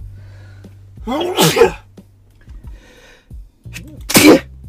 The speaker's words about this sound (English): Damn, I tried to get to the pause button, but I was like mid-sneeze. Not bad. I wasn't trying to sneeze on camera.